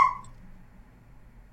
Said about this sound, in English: No, it's this dog that I'm dog sitting. They're like, let me in dog.